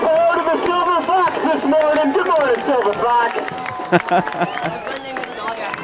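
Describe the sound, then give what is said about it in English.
A loud crowd cheers and shouts in many overlapping voices, with scattered sharp claps breaking through, especially toward the end; the roar stays steady and dense throughout. “They're clapping, cheering. I mean, listen to the crowd. They're going nuts, man.”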